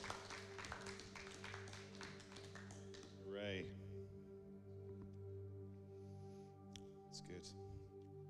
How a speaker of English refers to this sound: Amen. Thank you, wonderful people. We can have people clap because there's people, some people here.